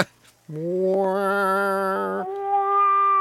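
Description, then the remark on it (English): A person's voice imitates a car's noise that sounds like cats meowing, holding one long, steady-pitched tone for about two seconds before stepping up to a higher note, fairly loud and with no other talk. “Sounds like cats meowing.”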